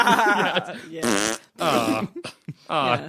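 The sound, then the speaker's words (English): A voice imitates farting with a series of loud, buzzy raspberry bursts, about four long ones plus a few short sputters, separated by brief pauses. “I feel like yours would probably just make a farting sound.”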